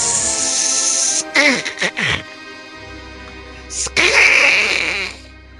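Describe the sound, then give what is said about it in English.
A loud cat hiss, apparently voiced by a person imitating Captain Drezel's psychic space kitty cat in a Han and Chewie story, breaks into short yowling snarls midway and then returns as a second long, spitting hiss. “And his psychic space kitty cat.”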